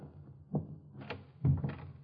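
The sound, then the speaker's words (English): The door of a doctor's room swings shut with a low thump, followed by a brief rattle and a second, firmer thud as it settles closed. No one speaks. “Close the door.”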